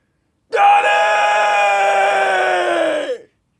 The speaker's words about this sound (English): Why am I yelling? It's because it's Cosmic Ghost Rider number 2.